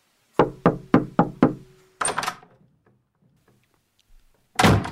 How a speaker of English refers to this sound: What about hopeful knocking, door opening cautiously, door slamming?